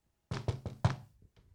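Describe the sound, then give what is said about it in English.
Four quick, solid knocks land in a steady rhythm on a hard surface, fairly loud, followed by a faint softer tap and silence. “Exactly. Four knocks.”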